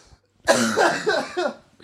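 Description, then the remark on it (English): A person lets out a rough, throaty coughing fit, several harsh coughs running together in about a second, fairly loud, with no talking. “Boy, I've got a cough today.”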